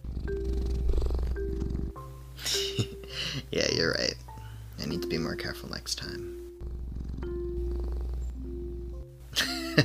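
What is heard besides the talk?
cat purring and meowing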